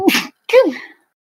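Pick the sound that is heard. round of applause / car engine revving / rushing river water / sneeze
sneeze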